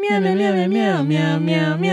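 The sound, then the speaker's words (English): A person imitates a cat's meow, a steady, loud, tonal voice that sags in pitch midway and then levels off, with no other sounds around it. “Meow, meow, meow, meow, meow. Do it again.”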